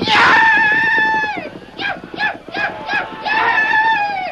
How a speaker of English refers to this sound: In response to his master's urging, and even though he carried two men, Scout lunged forward at breakneck speed. In the confusion, Tonto depended upon speed and his wild yells to be taken for just another Blackfoot brave.